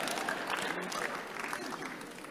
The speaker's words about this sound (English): No, I like the way this man is clapping. He's a rare man. All the men here, they are hypocrites. The rare man is this one.